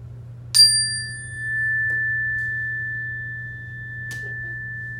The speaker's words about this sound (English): is going to hit the chime, and we're only going to raise our hand when we don't hear the noise anymore.